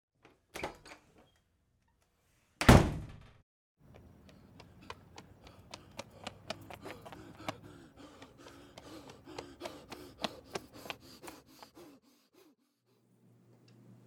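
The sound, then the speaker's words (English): A single heavy thud, like a door shutting, lands after a lighter knock, followed by a quiet stretch of soft ticking and rustling movement. No one speaks. “I didn't ever see what she did when I heard the door close.”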